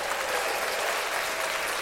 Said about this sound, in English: Let's clap that up.